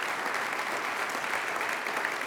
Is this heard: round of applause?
yes